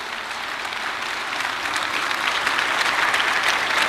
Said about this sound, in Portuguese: gente recebesse com uma salva de palmas essa mulher de Deus.